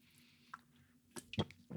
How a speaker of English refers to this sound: A little H-E-B sparkling water sip.